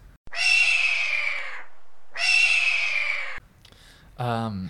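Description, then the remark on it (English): A person voices two long, loud, screeching hawk-like cries, each slightly falling in pitch, with a short pause between them, followed by a brief moment of someone speaking. “Do you want to do a hawk noise?”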